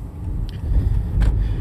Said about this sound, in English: I got the air blasted in my car. Turn it down a little bit.